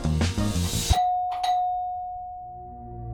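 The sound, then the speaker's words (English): Music cuts off abruptly and the doorbell of John Lennon's Bank Street apartment chimes, two clear tones ringing out, then a long, slowly fading hum of resonance. “The doorbell to John Lennon's Bank Street apartment rang.”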